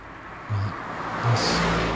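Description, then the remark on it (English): A funeral car, one of a couple of hearses, drives past in Italy with a steady engine and tyre noise, a low rumble swelling briefly twice over a continuous road hiss, with no voices. “There's a couple of funeral cars coming along.”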